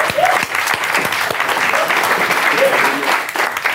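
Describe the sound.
A crowd applauds a capital allowances surveyor being invited up to speak, a dense, continuous patter of many hands clapping at an even loudness for several seconds, with a few faint voices and cheers mixed in.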